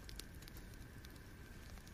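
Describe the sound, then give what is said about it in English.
A fireplace fire crackles steadily, with irregular small pops and snaps over a soft, constant hiss. It is fairly quiet, and no one speaks. “Hope you're enjoying the sounds of the fireplace too.”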